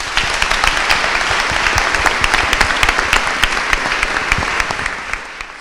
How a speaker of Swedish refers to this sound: Nu återstår det bara för mig att välkomna utrikesminister Ann Linde upp på scenen. En varm applåd!